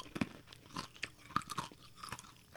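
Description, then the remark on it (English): Crunchy chewing of a hard toffee candy made by Brown and Haley of Tacoma, Washington, with a quick, irregular series of sharp crackling bites and mouth sounds, fairly quiet and with no talking. “That's me chewing. And this is me chewing.”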